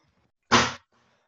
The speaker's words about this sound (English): So that bang was the delivery man knocking on the front door with my new phone.